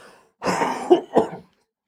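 A fairly loud burst of coughing: a rough throat-clearing cough followed by two sharper coughs in quick succession, then silence.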